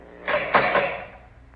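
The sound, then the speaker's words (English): A prison cell door in a penitentiary death house, opened by a guard on the warden's order, clanks open with three quick metallic knocks and rattles, the last one ringing out and fading away over about a second. No voices. “Oh, guard, open the cell door.”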